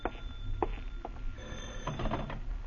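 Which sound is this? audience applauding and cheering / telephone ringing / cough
telephone ringing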